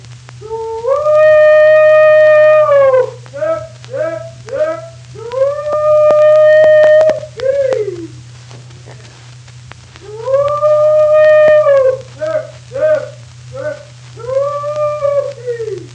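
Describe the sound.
A man hollers a cow call: long, sustained, wavering tones that rise and fall, broken up by short clipped yelps. The calls are loud and alone over a steady low hum.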